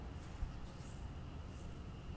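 Cicadas chirr steadily outside, a faint high-pitched buzz that holds without a break, with no voices and only a low background murmur beneath it.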